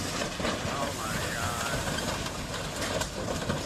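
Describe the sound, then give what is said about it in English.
A train carrying cars rumbles steadily while slowly braking to a stop, with a thin metallic squeal riding over the dense, roaring noise of wheels on rails, loud throughout. “And believe it or not, this is how long it takes to stop a train.”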